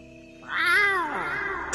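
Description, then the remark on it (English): The character Ocelot in the video game Metal Gear Solid 3: Snake Eater lets out one long cat-like yowl as he calls in the Ocelot unit, rising and then falling in pitch, loud and tonal, with no talking around it and a sharp noisy burst at the very end. “It's the noise Ocelot makes when he calls in the Ocelot unit in Metal Gear Solid 3.”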